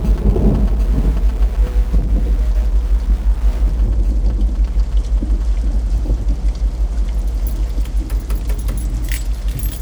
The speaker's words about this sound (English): Getting heavy, Liz. You'd better get out of the rain, or you'd be soaked to the bone.